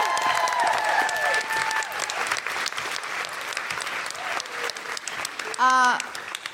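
A crowd at a live show applauds steadily throughout, cheering for producer Tom Selinsky: a dense crackle of clapping, with high whoops and cheers rising over it early on and a loud cheer near the end.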